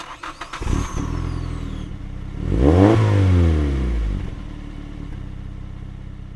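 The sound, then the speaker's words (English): A car engine starts with a clattering crank, then revs up loudly in a rising and falling sweep before settling into a steady idle, with no voices, as the car is pulled around. “All right, Jeffrey, pull my car around.”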